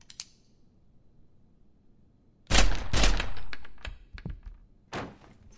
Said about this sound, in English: Okay, fair enough. I'm shooting through the door. Wait. What if it's an animal? I'll aim high.